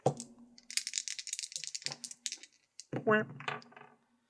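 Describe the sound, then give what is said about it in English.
Dice rattle and clatter in a dense burst of sharp clicks lasting about two seconds as they are rolled for a charm roll, landing on 9; a short voiced exclamation follows as the rolling stops. “I get a plus three to that when I rolled a 9.”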